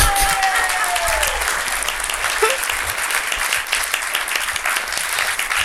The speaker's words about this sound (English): I've got some good claps in here, hearing them. Oh, that is nice. Crispy.